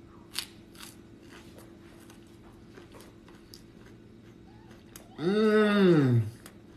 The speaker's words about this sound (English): All right, let's eat some of this chicken salad.